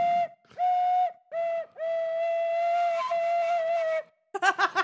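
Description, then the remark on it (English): A wooden Peruvian quena flute plays the same single breathy note in several loud blows, the last held for a couple of seconds, then ends with a short sputtering flutter. “It's a wooden colored Peruvian. Peru. Quena flute?”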